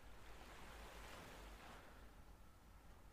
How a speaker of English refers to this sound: Close your eyes. Allow them to close gently and listen to the relaxing waves in the background.